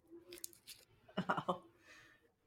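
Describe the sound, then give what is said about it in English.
Wet mouth noises of someone sucking and chewing on a cough drop: soft smacks and clicks, then a louder cluster of squishy crunching bites, with no clear talking. “So you're going to hear me with my cough drop.”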